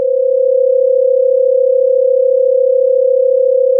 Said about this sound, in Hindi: अब आपको ये जो वॉबलिंग यानी कि कांपती हुई सी साउंड सुनाई दे रही है, ये है न्यूरल बीट्स जो कि इन दोनों बीट्स की फ्रीक्वेंसी का डिफरेंस की वजह से है। आप अपने ईयरफोन्स का कोई एक साइड भी निकाल कर देख लो, आपको प्लेन बीट ही सुनाई देगी।